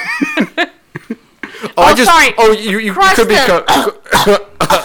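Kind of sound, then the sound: human body sound, cough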